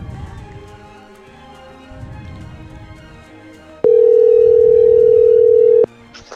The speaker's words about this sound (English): We're just gonna keep having fun here and add another call to the party line. Okay, pile them on. Let's see if this works. It's ringing.